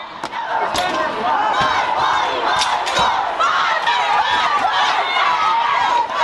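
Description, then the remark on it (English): A rioting crowd at the Arizona state Capitol shouts and yells nonstop at full volume. Several sharp, heavy smashing blows cut through the roar at irregular intervals as they try to break the Capitol's windows. “Here they are attempting to smash the windows of the Capitol.”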